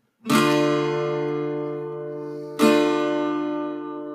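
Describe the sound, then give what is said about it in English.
A guitar strums a D minor chord twice, each strum ringing out with a rich, sustained tone that slowly fades before the second strum lands about two seconds later. No voices. “Here's a D minor.”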